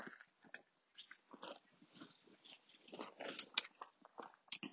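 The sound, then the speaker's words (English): Crunching as someone bites into a crisp grilled sandwich made with homemade bread and keeps chewing, with a steady run of loud, crackly crunches over several seconds and no talking. “It's very crunchy.”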